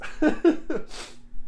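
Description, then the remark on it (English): A sneeze: three quick, voiced gasping breaths build up before a sharp, hissy burst, then silence with a faint low hum underneath. “God bless you.”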